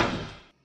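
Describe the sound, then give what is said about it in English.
A door opens with a single short, fairly loud thud and rattle that fades over half a second, heard alone with no voices. “Let's try another door over here. We're gonna open up door number 5 or something.”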